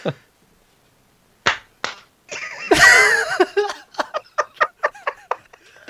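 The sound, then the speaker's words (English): Two sharp hand claps, then a burst of laughter and voices, followed by a quick string of about eight crisp claps in an uneven rhythm, as people clap to start a recording. “Oh, wait, we didn't clap to start it.”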